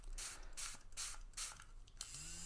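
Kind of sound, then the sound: household object, spray bottle spraying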